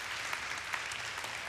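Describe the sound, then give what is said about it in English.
A small audience of four people claps in a steady patter of overlapping hand claps, soft, with no voices over it. “Four of you are clapping. Let's try that again.”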